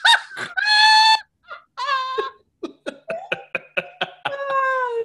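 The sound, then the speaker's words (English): A female cat meows repeatedly as she comes in, starting with a few long drawn-out cries and then breaking into a quick series of short, chirpy meows, fairly loud with no talking. “My cat just came in. She's concerned.”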